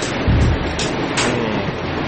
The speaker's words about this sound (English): Alright, let's see if we got some bacon. Alright. The bacon sizzling, he took a plastic fork, took a piece of bacon, and ate some.